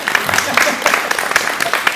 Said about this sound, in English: Clap again.